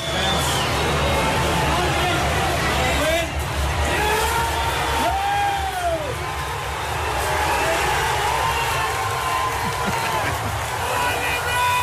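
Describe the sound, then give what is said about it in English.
A huge stadium crowd roars and cheers at the final whistle of a match won by Limerick over the Banner: a dense, loud, sustained wall of voices with individual shouts and whoops rising above it for the whole stretch. “Here's the moment the whistle went.”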